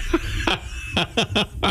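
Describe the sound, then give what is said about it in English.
A fairly loud run of about five short, sharp coughs in quick succession, with brief gaps between the bursts and no talking. “Look, now I'm coughing.”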